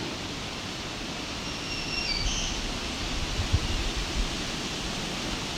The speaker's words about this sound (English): I'm hearing a thrush in the distance, we're gonna maybe head that way.